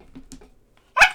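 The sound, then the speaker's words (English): A single sharp dog bark rings out loud, following a moment of near-quiet with a few faint, muffled low sounds. “That dog, is he wild? Is he a wild dog?”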